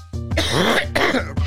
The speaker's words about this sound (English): That shit got me coughing like a buffa. Oh, God. Woo, that GMO got me hit.